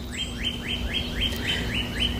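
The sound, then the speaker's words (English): A northern cardinal in a backyard in Tuscaloosa, Alabama, on a sunny morning repeats its pew-pew call: about eight quick, evenly spaced rising whistles in steady rhythm, clear above a low constant hum and soft outdoor background noise. “That pew-pew sound sort of sounds to me like a fake little laser beam gun.”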